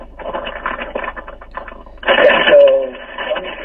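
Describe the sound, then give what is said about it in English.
Crackly static hisses over a thin, phone-line-quality connection during a phone call, steady at first and then growing louder for the last stretch, with faint voice-like tones buried in the noise. “Are you out in the wind now? Wind? No, does it sound like I'm windy? Yeah, just a little static.”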